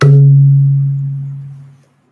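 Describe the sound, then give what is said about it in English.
A single deep, booming stroke on a small clay-and-leather drum tied to the hip of a Baul singer-dancer, played to imitate thunder, rings out loud, its low resonant tone sustaining and slowly fading over nearly two seconds, with no voices. “They cannot play a very big instrument. So it is tied to the hip. And we say that we are trying to imitate the sound of thunder, the sound of the sky.”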